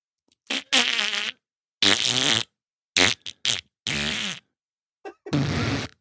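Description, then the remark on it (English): A series of wet, buzzing fart noises blown with the lips, about six bursts of varying length with short pauses between, loud, with no talking. “That kind of sounds like a fart.”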